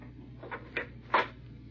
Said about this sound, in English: Hurry then, madame, while I close the door.